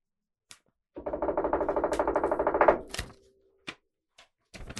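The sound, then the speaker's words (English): Tape peels off a paper envelope right at the mic in a loud, crackling rip lasting about two seconds, followed by a few sharp paper taps and rustles. “Get that right up to the mic so they can hear you unseal it.”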